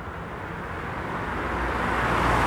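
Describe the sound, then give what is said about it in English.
A single car approaches along a road by a canal as the temperature drops close to freezing, its steady tyre-and-engine rush swelling gradually louder over a couple of seconds, with no voices or other sounds. “The occasional car only serves to highlight the eerie serenity that's now enveloped the feeder.”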